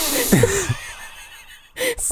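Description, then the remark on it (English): A person imitates a donkey seen on screen in a film with forceful, breathy sniffing and snorting, a noisy burst with a brief vocal squeak, a short pause, then another hard exhale, fairly loud. “Sniffing it so hard and blowing out so hard, and then … started breathing as it.”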